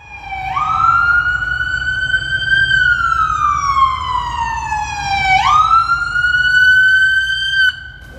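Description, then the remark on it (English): A loud police siren wails in slow rising and falling sweeps, cycling about twice, over a low rumble of moving vehicles, as a cavalcade headed by state police arrives at Bradley International Airport on a Saturday morning. No one speaks. “I joined them bright and early one Saturday morning as they arrived at Bradley International Airport, presidential style, in a cavalcade headed by state police to crowds of people waiting to cheer them on.”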